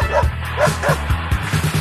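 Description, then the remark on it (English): A dog barks several times in quick, yappy bursts over a bouncy, rhythmic musical backing, the barks loud in a short jingle for the segment Bruce Perky's Dog of the Week. “Now it's time for Bruce Perky's Dog of the Week.”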